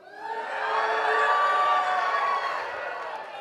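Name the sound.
church audience cheering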